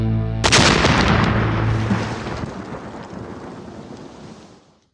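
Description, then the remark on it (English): A single drone strike explosion sound effect: a sudden, loud blast followed by a deep, rumbling roar that slowly fades away over about four seconds, with no voices. “drone strike.”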